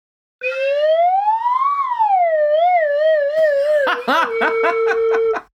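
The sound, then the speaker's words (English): A voice whistles an imitation of a dunk tank splash: a steady tone glides up, slides down with a wobbling vibrato, then breaks into a quick run of sputtering, splashy bursts. “Can you just whistle it in a more dunk tanky way?”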